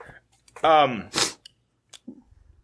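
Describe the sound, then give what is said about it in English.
A single loud sneeze: a rising voiced intake followed by a sharp, hissing burst, then a few faint rustles in otherwise quiet surroundings. “Bless you.”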